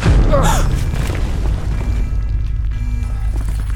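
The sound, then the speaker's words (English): A deep, rumbling explosion in the lower plant ring booms loudly, its low roar sustaining and echoing for several seconds with faint rattling debris. “Some kind of explosion, lower plant ring.”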